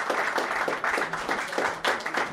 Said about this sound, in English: Let's have a nice round of applause, ladies and gentlemen.